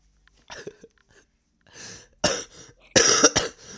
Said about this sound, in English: Sorry about the cough.